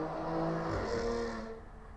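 Local motorbikes roar past outside, the engine pitch shifting as they accelerate and fade over about two seconds. No one speaks.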